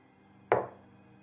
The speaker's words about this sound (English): Is that one knock for no, or... That means no, right?